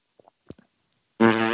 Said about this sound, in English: There you go. That's a spin fart, if I've ever heard one. That was a twirl. That was a twirt.